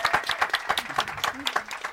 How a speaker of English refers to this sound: Yeah, so everyone here at St. Mary's, let's give them all a round of applause for being here.